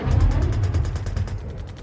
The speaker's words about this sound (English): And then we're there, the explosion of sound is immense. We've just watched a tank get blown to smithereens.